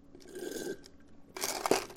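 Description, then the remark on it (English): A plastic cup is crushed in a hand as an illustration, first a soft crinkling, then a burst of loud, sharp crackling crunches, ending abruptly. No one speaks. “End of the crunchy illustration.”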